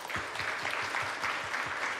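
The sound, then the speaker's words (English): A church audience claps together in a steady burst of applause, in response to a call to clap if they like going to the beach. Many hands strike quickly at an even, moderate loudness for about two seconds, with no voices. “It is the end of summer, and clap if you like to go to the beach.”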